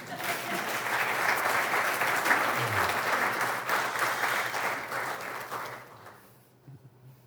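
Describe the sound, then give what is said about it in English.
An audience breaks into sustained applause, a dense steady wash of many hands clapping for about six seconds before it thins and fades out, with a few murmured voices underneath. “Well, you can clap again.”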